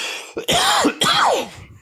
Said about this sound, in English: That's a big cough.